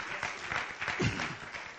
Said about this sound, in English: I think somebody ought to give the Lord a hand clap for the blessing of the Lord.